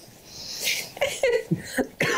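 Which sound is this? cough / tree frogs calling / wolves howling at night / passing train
cough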